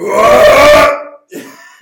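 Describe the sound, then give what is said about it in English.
A voice imitates the grunt of Colossus from the X-Men arcade game: one loud, deep, belch-like growl lasting nearly a second, then a brief pause and a shorter, quieter follow-up grunt. “That sounded like a colossal belch.”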